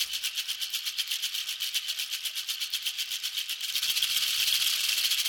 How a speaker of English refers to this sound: I'd guess it's the shaker tracks. There's not much reverb on them, and they're panned hard left and right.